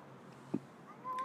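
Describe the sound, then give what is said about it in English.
A cat gives a single short, thin meow at the end, fairly quiet against a low background hum, with a soft thump just before it and no one talking. “I'm running for my cat. Who want to be the star so bad? I don't want to hear it, Whiskey.”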